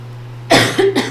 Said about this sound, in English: It's the damn cough that's never going to end.